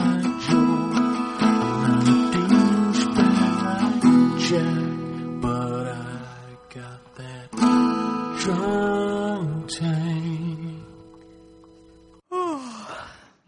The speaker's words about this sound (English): Nice big yawn. It was it was calming music. You're obviously very excited to be here.